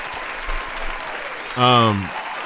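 A steady round of applause for a stand-up comedian guest, dense clapping throughout, with a brief loud vocal cheer that slides downward in pitch near the end before the clapping carries on.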